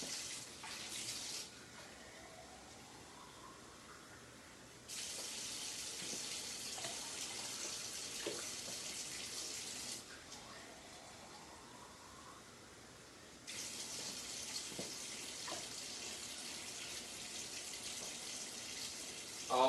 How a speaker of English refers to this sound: This is warm water. I was gonna make it hot, but this is warm. So here we go, 3, 2, 1. Does this actually work? Mickey Mouse, Dollar Store, Dollar Tree compressed towel. I'm gonna add a little bit more water. Just getting some.